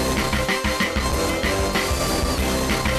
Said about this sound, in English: Let's play that outro one last time.